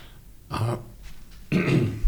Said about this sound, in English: Someone has to clear his throat.